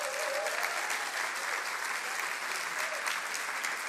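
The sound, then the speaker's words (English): Steady applause from an audience for a drummer's performance fills the whole stretch, a dense, even patter of many hands clapping at once without pause, consistent in loudness. “And I'd like you to show your appreciation by giving him some applause.”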